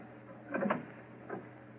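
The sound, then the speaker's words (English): A door is opened carefully, easing open with a soft, drawn-out creak, followed moments later by a shorter, fainter creak against a quiet low hum. No one speaks. “Easy with the door. Careful.”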